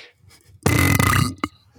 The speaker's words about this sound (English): How many more burps you got loaded up in there? It's a great question. It seems like they're coming at 10-minute intervals. I think it's pretty, a lot quicker than 10-minute intervals. Seems to be like every 3 minutes.